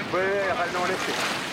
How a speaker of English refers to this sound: Above her, two orange-colored sails ripple in the wind. By nightfall, they're on the open sea.